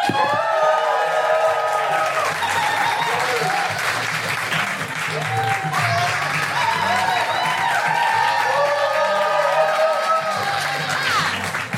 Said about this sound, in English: Beautiful audience of 21 Soho, please whoop, cheer, clap, and hoot if you would like for your host for the evening